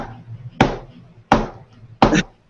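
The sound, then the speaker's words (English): Three loud, evenly spaced knocks on a door, each a sharp wooden thud with a brief ring, separated by short pauses over a faint low background hum. “I think that's the door.”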